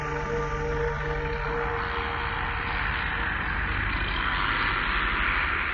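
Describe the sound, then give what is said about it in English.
A continuous, gritty engine-like buzz, like a chainsaw held at steady revs, droning evenly for several seconds with faint sustained musical tones blended underneath. No one speaks. “Use a chainsaw sound effect for that and kind of blended it in with the music.”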